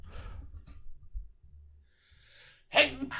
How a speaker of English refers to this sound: I feel a sneeze.